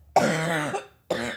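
Two loud coughs from a person who is recovering, a longer harsh one followed after a brief pause by a shorter second cough, with no talking.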